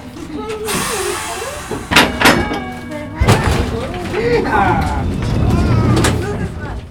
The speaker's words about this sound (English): If you haven't figured it out, that was from inside the Fort Collins streetcar, or trolley. More specifically, Birney Car 21.